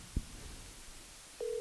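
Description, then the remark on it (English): A faint thump, a moment of quiet, then a steady electronic ringing tone starts near the end: an outgoing call ringing through a phone on speakerphone held up to a microphone. No one talks. “Answer the phone”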